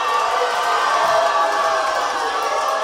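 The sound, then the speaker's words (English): A large crowd cheers in a dense, steady roar of mixed voices, with a boo blended into the noise. It stays loud and even throughout, with no clear speech. “A boo in there.”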